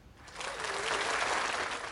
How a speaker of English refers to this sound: Clapping. Why do we know we had this? I didn't know we had that one, too.